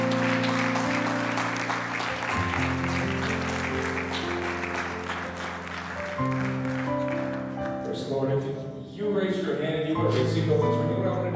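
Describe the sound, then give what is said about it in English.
An audience at a worship service gives the Lord a hand clap of praise: steady, loud applause over sustained organ chords, with voices rising near the end as the clapping continues. “If you receive the word of the Lord today, would you just give the Lord a big hand clap of praise today?”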